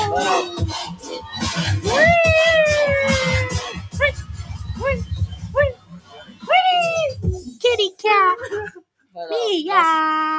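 Drawn-out, wavering meows rise and fall over a thumping low beat, then a run of shorter, separate meows follows once the beat drops away, loud.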